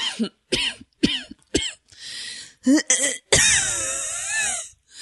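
A quick series of sharp coughs in uneven bursts, ending in a longer, strained, raspy cough that trails into a wheezy, whining breath. No talking.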